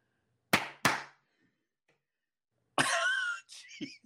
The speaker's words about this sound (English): No, it's going to turn the light out, and then I'm going to clap again. It's going to turn it on. No joke. My parents got this for me.